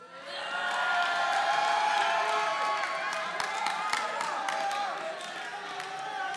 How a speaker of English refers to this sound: But I need you to make some serious noise as thousands of people are walking by and this blind man is trying to yell the name of Jesus. On 1, 2, 3.